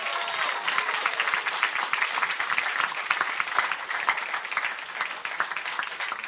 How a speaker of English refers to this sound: If we can have the servers come on in, come on in, come on in. Everybody give them a nice round of applause.